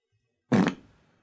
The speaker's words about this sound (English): Today's episode is brought to you by Fart Sound Effect Number 7.